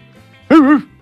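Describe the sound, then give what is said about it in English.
A person imitates a dog with one loud, drawn-out bark whose pitch wavers up and down, rising suddenly out of near silence and fading quickly after. “Why are you barking? You can speak. I'm a human.”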